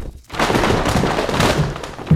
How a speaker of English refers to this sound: I knock things over a lot, but I mostly knock things over that are right in front of me. Oops, like that.